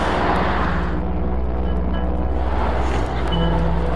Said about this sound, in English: I think our bus is coming. And I hope you can hear most of this, because I know the traffic's loud. Man, I hope you can hear it.